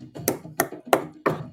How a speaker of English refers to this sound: Oh! That's me knocking it. And the bun's not crumbling. It's not. It's insane.